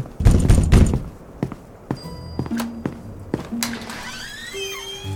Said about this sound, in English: If there are spirits talking to me, please give me a sign. Knock on something.